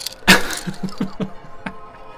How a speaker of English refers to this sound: The hard orange plastic strikes Stamos in the back of his sexy head. He yells, have mercy, and crashes head first into a stack of light bricks.